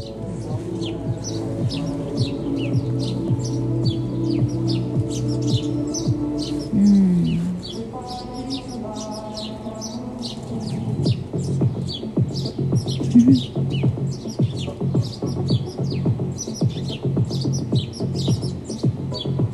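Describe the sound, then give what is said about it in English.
Birds sing and chirp steadily outdoors, many quick tweets layered over a low continuous hum, with a few brief louder calls standing out in the middle. “The birds are singing.”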